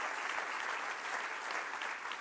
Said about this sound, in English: Anybody want to agree with me on that and clap your hands and say, "God, we return our thoughts."